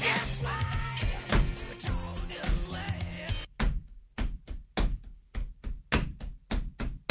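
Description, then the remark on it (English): A full band recording plays briefly, then cuts out, leaving a drum beat tapped out with bare hands: about a dozen sharp thumps and slaps in a loose, uneven rhythm, with nothing else playing. “Well, no, he's just playing with his hands.”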